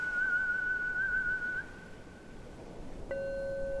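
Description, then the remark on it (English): A woman whistles and warbles alone: a long, steady high note with a slight waver, a brief pause, then a lower held note, like the start of a slow, moony song. “She whistled and warbled a moony song.”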